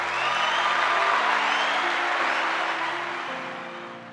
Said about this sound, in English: Dear future wifey, let's give a round of applause for the last woman who broke my heart.